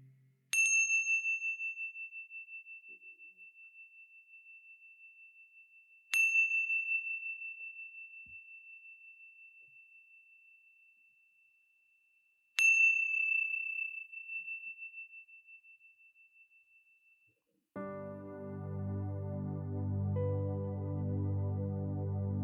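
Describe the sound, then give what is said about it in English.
A meditation chime rings three times at slow, even intervals, each clear tone sustaining and fading gradually, followed by a swell of soft, warm instrumental music. “And when you hear the sounds of a chime, gently coming back into this space.”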